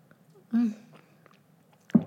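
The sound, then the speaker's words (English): Quiet mouth sounds of someone sipping water: a short voiced gulp early on, faint clicks, then another brief swallow near the end, with no talking. “I'm just going to take a sip of water.”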